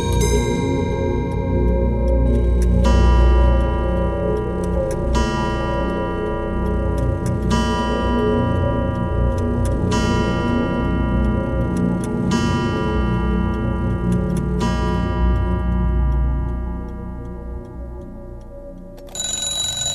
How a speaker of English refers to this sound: We're in a shop called Timepiece Antiques. It's the only clock shop in Dublin City. And here we conduct the restoration of pre-20th century clocks of all shapes, designs and origins.